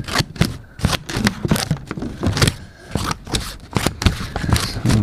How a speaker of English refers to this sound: Good old elementary scissors. Those are mine.